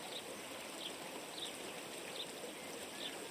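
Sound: river water flowing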